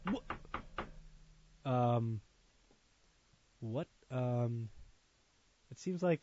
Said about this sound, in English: It seems like there's someone knocking at the door. What is happening? What's going on? Let me open the door real quick. Let me see what's going on.